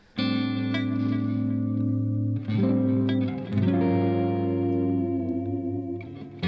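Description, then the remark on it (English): A clean electric guitar with a Fishman-labeled bridge plays sustained chords that ring out and blur together, with long delay repeats and a wash of reverb from the Flint trailing each change. No voices, just the steady shimmering tone. “And I'm thinking longer delay and some reverb, which is from the Flint.”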